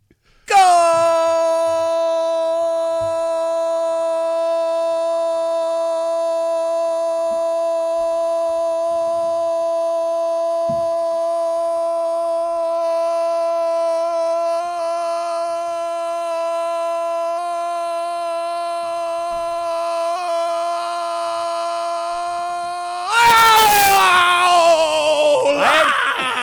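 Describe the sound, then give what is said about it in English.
One voice bellows a drawn-out goal call, holding a single loud, steady, fairly high note for about 25 seconds, timed, before it breaks off into a burst of ragged noise. “you said goal for 20 straight seconds?”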